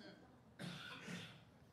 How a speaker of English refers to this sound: You could hear people cough.